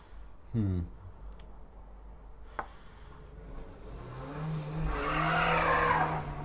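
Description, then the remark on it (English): A car outside does a brief, feeble burnout: the engine revs up over a few seconds while the tyres give a thin, wavering squeal, fading out. “It like the most pathetic burnout ever.”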